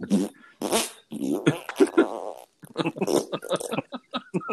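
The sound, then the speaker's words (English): A string of loud fart sounds, apparently made with the mouth as a vocal imitation: several sputtering, buzzy blasts in quick succession, then a choppier burst of short pops. “for somebody to start farting at the end.”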